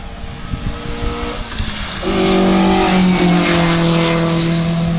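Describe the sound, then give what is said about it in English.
A GTV car engine revs up sharply, its rising harmonic whine growing louder and steadier as the vehicle accelerates, with no voices over it. “GTV? Yes, I remember that. Those cars were campaigned at Bathurst about in the late 80s,”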